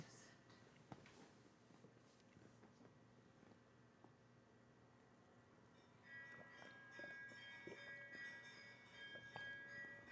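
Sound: bells ringing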